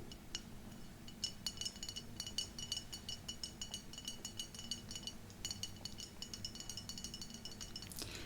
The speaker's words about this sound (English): And I like this kind of glass bottle sound.